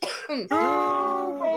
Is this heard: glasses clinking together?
no